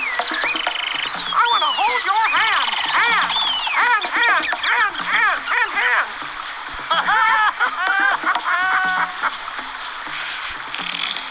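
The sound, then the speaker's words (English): Toucan calls from toucans up on vines in a cave in a video game fill the scene, a dense, loud chorus of repeated rising-and-falling croaks that overlap in quick bursts over a steady hiss, pausing briefly before starting up again. “I think that joke, that terrible joke, would have been slightly more bearable to listen to if the bird noises in the background hadn't been so oppressively loud.”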